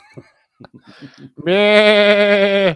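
A series of short, soft rustling knocks gives way to one long, loud sheep bleat, steady, wavering slightly before cutting off.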